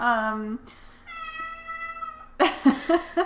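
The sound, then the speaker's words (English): A cat in the background lets out a drawn-out, wavering meow followed by a long, strained screech, then a burst of harsher yowling; the cries are fairly loud, with a voice briefly underneath. “We can't edit this out without sounding bizarre, so sorry for the cat screeching in the background.”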